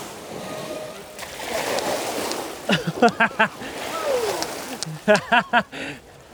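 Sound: splashing water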